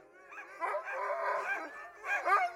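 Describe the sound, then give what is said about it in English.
Working huskies of 30 to 40 kilos, kept on a small island base, howl and yowl together in a long, wavering chorus, then break into a couple of short barking yelps near the end; the dogs are moderately loud, with no talking. “When I say dogs, I mean huskies, and we're talking about 30 to 40 kilos of a fairly sizable dog.”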